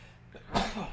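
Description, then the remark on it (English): A single sharp sneeze bursts out, loud and breathy after a brief quiet intake, then trails off into faint breath. “Bless you. See, you don't say that because then things start to go wrong.”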